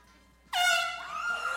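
A single loud, sustained horn blast starts abruptly after a quiet moment and holds steady to the end, bright and brassy with strong harmonics.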